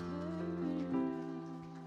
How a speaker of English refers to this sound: Can we give the Lord a hand clap of praise?